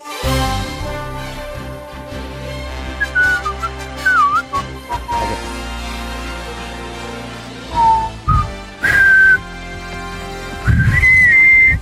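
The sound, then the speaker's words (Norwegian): A short whistled news-style jingle introducing a news segment: bright, clear whistled phrases rising and sliding in quick bursts over a steady instrumental backing, loud, with no talking. “Det som å være på nyhetene”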